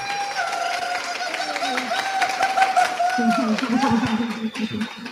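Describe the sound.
An audience at an in-person gathering in Zihuatanejo, Mexico, applauds the panel speakers with steady, dense clapping for about five seconds, mixed with cheering and chattering voices from the crowd.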